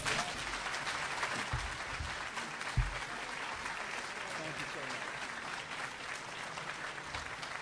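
Sustained applause from an audience for Larry Sabato after his morning talk fills the whole stretch, a dense steady patter of many hands clapping at once, fairly loud and continuous without any break.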